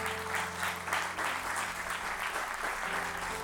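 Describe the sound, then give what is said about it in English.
An audience gives the Lord a hand clap, clapping together in a dense, sustained burst of applause, many hands overlapping into a steady roar that holds at an even level for a few seconds without speech. “Come on, all over this place, give the Lord a hand clap, will you?”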